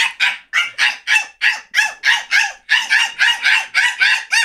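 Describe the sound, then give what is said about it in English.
A voice imitates a little dog's yapping: about fifteen quick, high-pitched barks in a steady, rapid run, each short and sharp, with no other talk. “Little dogs go like this.”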